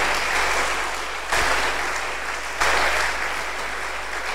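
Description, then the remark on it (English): A church audience at the Zinzendorf Missions Conference claps for the Lord in a dense, continuous wash of applause, with two brief surges in loudness partway through; no voices stand out. “Clap for the Lord well.”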